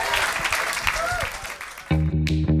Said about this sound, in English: All right. Please give your panel a round of applause.